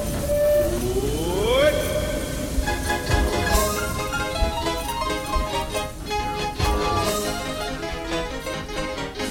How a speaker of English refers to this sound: And here we go on the Disneyland Railroad. Now leaving for a grand circle tour of the Magic Kingdom.